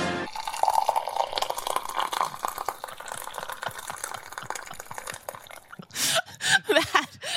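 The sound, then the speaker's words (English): Coffee pours steadily into a cup for several seconds, a trickling stream with rising pitch as it fills, followed by a few brief bursts of louder sound. “someone pouring a cup of coffee?”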